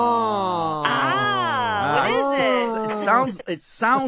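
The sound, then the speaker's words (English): A caller vocally imitates a noise their car makes from around the gas tank area when going fast up a hill, thought to be a failing fuel pump: a steady droning hum with wavering, sliding pitch that breaks into a few short choppy bursts near the end. “It sounds like you have a fuel pump that's ready to conk out.”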